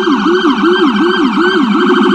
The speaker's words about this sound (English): There's the sirens and, of course, the car horns. And some New Yorkers have had it up to here.